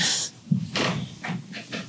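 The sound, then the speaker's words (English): A female dog pants in quick, breathy bursts, a few rapid huffs of air following one another with a brief snort-like sound early on. No one speaks. “Oh, my dog's about to have a big crash here.”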